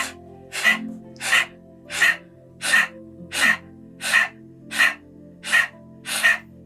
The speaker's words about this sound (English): and we're just going to do breath of fire, and we're just going to see how the dogs respond with the breath of fire. We're going to draw the navel into the spine and release the tongue out.